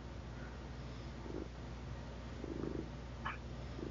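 A cat named Betamax purrs steadily, a soft low rumbling drone that pulses gently in a continuous rhythm, fairly quiet, with no talking over it.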